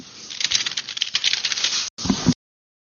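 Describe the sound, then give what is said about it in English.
Rapid, dense keyboard typing, as a sound effect of two people hacking on the same keyboard: a flurry of crisp overlapping clicks that runs steadily for about two seconds, breaks off for an instant, then bursts again briefly before stopping abruptly. “We'll just put the sound effect here of two people hacking on the same keyboard, because that's how good those successes were.”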